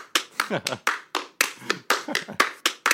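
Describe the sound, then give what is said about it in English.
Around a dozen sharp hand claps land at uneven, irregular intervals, loud, with no steady beat holding them together. “I love how it starts with their unrhythmic clapping, and they're just staring off into space and like clapping their hands.”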